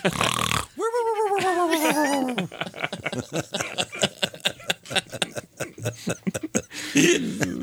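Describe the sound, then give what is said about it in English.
A voice imitates a loud, exaggerated snore likened to Big Bird's snore: a harsh burst, a drawn-out tonal groan, then a long stretch of rapid, fluttering rattles that taper off. “Yeah, snore, I mean, that was impressive.”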